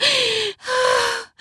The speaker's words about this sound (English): Her eyes roll back. Her panting, gasping, reaches a point where they can both tell that